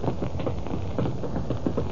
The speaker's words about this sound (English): A late afternoon thunderstorm breaks over the city.